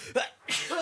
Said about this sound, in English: Bless you. So. Thank you. Thank you. You have been blessed.